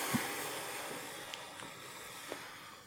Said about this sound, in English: The water below begins to churn and rumble.